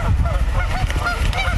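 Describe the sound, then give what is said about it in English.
A flock of geese honking together, overlapping calls layered over one another in a loud, busy chorus with no pauses between calls. “I love chasing geese, but when there's a big group of them, sometimes I get a little scared.”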